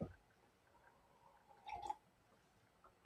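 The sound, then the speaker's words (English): A brief, soft sip of water, a single quiet slurp in near-silence, with faint mouth sounds at the start and end. “I have a sip of water.”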